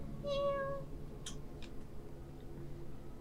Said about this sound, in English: There's a cat. A kitten. Help me. That ain't no kitten that I know.